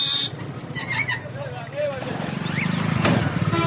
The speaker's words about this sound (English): This looks like a traffic jam, but it's not. It's just the way the traffic is here, slowly inching by, horns and bells sounding. Many of the vehicles are shabby and well used. It sounds cacophonous and chaotic, but there's an order to the noise.